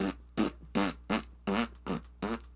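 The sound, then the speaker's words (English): A voice imitates farting with seven quick, evenly spaced blurts, each a short buzzy raspberry-like burst in a steady stepping rhythm, fairly loud, imitating a fart with every step taken. “Because if it's like every time I take a step, because I love those farts.”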